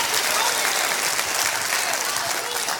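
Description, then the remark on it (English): A crowd claps steadily and densely with hands lifted over their heads in praise of the Lord. The applause is sustained and fairly loud throughout with no break. “Would you lift your hands and clap them over your head right now?”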